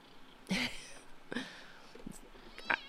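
A cat, Tara Jr., meows three times in a row, short, high-pitched, whiny calls spaced about a second apart, fairly quiet, with no talking over them.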